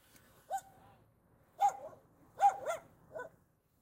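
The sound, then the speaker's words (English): A dog looking out of an open window barks about five times in short, irregular bursts, a couple landing close together, fairly quiet, with no voices and only faint background hum between the barks. “Yeah, you hear him barking? Listen.”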